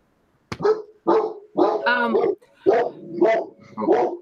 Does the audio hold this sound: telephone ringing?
no